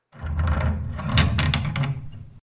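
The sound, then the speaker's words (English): A heavy cellar door grinds and rumbles for about two seconds, with several scraping clunks along the way before it stops abruptly. Fairly loud, with no voices. “I think it was the cellar door right there.”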